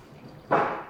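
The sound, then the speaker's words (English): Coffee from a manual brewer suddenly bursts into a glass halfway through with a hissing, splashing rush that holds briefly and then slowly eases off. No one speaks. “Yeah, I don't think we're hitting 9 bars of pressure here. I worry that if we did hit 9 bars, the glass may break underneath me.”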